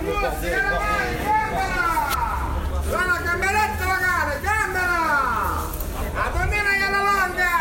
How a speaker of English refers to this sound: Yeah, the fishmonger was going off. All right, this is the loudest fishmonger I've ever heard.